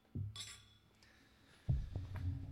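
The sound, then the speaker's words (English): Glasses of 100-proof, 5-year-aged bourbon clink together in a quick toast, a bright high ring that fades, followed by low knocks and handling noise. “Let's go ahead. Cheers it up, guys. Cheers. Cheers.”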